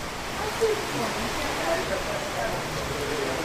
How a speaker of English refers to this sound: As you can hear, it's raining. Well, we are in the rainy season for the Philippines